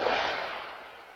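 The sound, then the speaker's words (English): A single gunshot-like crack, captured on a doorbell camera during a Sunday-morning shooting in August in a Salt Lake City area, trails off into a long, hissing echo, fairly faint and tinny, with no voices. “And the sounds of gunfire captured on that doorbell camera.”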